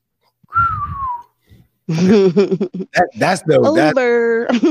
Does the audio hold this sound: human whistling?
yes